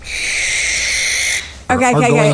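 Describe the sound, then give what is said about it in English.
A barn owl gives one long, harsh, hissing screech lasting over a second, loud. A person starts talking right after it fades. “How quiet is a hunting barn owl?”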